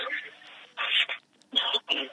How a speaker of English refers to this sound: Your phone is breaking. Your phone is breaking, and it's very, very low.